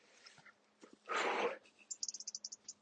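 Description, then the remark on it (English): A small bird in a tree chirrups in a quick run of about eight high, bright notes near the end, fairly faint and outdoors, after a short burst of rustling noise. “Little chirruping bird. Or frog maybe in the tree. Probably a bird.”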